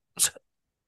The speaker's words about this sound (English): Sorry, I had to cough.